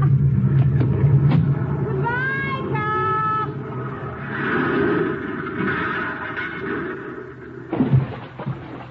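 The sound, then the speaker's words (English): A car engine rumbles steadily as the driverless car, left in first gear with the hand throttle pulled out, rolls off the road into the river below, with a brief mechanical whine early on and a sudden noisy burst near the end, loud. “I place the car in first gear. And then I pull the hand throttle out a little, turn the wheel, and get out.”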